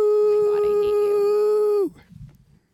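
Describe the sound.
A person imitates a husky's howl with one loud, sustained, steady-pitched note that holds for nearly two seconds, then drops away abruptly, leaving only faint low murmuring.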